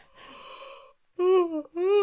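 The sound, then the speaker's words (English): A person yawns after opening their mouth wide while vocalizing: a long, breathy drawn-in stretch followed by two voiced, sighing tones that dip slightly in pitch, moderately loud and with no other talk. “So I just yawn.”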